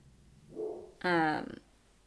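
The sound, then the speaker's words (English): A dog lets out one loud bark, bright and ringing for a moment, just after a soft low grumble. Quiet background otherwise. “The barking.”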